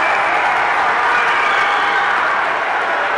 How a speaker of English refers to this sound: Butler's going to go in and he's going to dunk. And the crowd goes crazy.